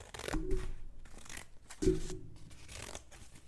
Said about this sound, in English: What he found instead was the big bad wolf and its huge belly. He slid it open with a pair of scissors.